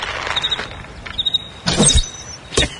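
A bowstring creaks as a bow, taken from the storage box of a Ram truck, is slowly drawn back, then releases with a sharp snap and whoosh as an arrow is shot, followed by a brief thud. No voices.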